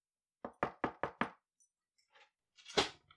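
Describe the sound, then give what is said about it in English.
Five quick, firm knocks on an apartment door in an even, rapid rhythm, followed by a brief quiet stretch with faint shuffling and then one louder, muffled bump. “What is all this knocking and the yelling?”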